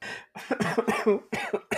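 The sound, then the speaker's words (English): A loud fit of coughing: several harsh, rasping bursts in quick succession, with short breaths between them and no speech. “Okay, before I die from this cough, do you want to just fucking end it here?”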